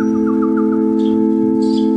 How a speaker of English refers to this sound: Act 2, Scene 4, a graveyard within the precincts of Castle Phlegm. The songs of birds.